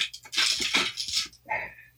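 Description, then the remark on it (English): Percentile dice are rolled, rattling and tumbling across a hard surface in a quick burst of clicking clatter, then settling with a final ringing clack. Fairly clear, with no voices. “I'm going to try to get louder dice next time.”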